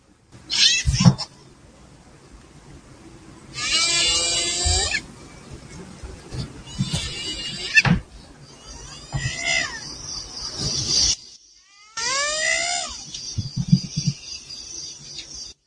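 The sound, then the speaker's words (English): A person imitates a hyena's call with a run of loud, high yelping cries that swoop up and down in pitch, delivered in several bursts separated by brief pauses. “It's a hyena.”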